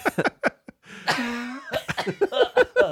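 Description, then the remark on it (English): A person coughs on request: a few short coughs, then a longer, strained, drawn-out cough, followed by a quick run of choppy coughing bursts. “turn your head and cough, please.”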